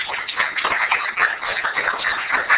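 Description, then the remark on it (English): A crowd applauds a guest on a show, with many overlapping claps forming a dense, steady patter of bright, crackling hand slaps that holds an even loudness throughout. “So we're going to clap for you here.”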